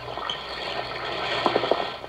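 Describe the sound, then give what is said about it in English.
A steady hiss of an Alka-Seltzer tablet fizzing in water, with tiny crackling bubble pops and a few brighter bursts near the end. No voices. “Listen to it fizz.”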